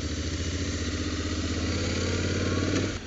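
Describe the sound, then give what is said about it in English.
A motorcycle with a DCT gearbox and no clutch lever rides through a traffic jam, its engine humming steadily at low, even revs, with a faint mechanical clatter and a slight drop in level near the end; no one speaks. “It's got some trigger style switches on the left hand handlebar. To put it into car driving terms, the DCT is very similar to the DSG gearbox used by VW and Audi.”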